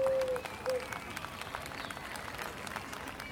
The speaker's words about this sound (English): A round of applause for Shasta, everyone.